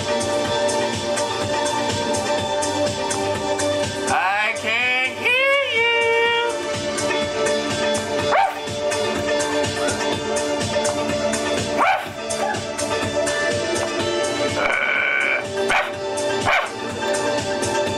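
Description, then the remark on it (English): A person imitates a dog, letting out a string of rough barks and high yipping whines, heard loudly over a dense, continuous musical backing. “You need to learn how to bark. And make it sound realistic.”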